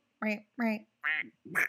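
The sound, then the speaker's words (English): A voice imitates a cartoon duck, letting out four quick, raspy quacking bursts in a steady rhythm, fairly loud with no other sounds around it. “You can't say quack and not expect me not to act like. I had to do the Donald Duck.”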